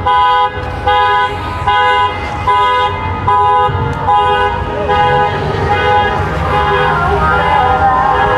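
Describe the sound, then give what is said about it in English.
A car alarm honks loudly and repeatedly in a steady rhythm, with strong harmonic blasts over a rumble of engine and traffic noise, outdoors on a sunny, clear day of about 18 to 19 degrees with a little wind. “And that guy's alarm is really loud.”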